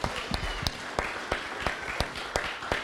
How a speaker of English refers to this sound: Can you give you guys one more round of applause